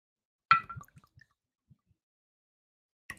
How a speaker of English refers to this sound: All right, so let's go ahead and open up the bottle, Jack Daniels. Oh, there we go. Pour me a shot of good old Jack Daniels.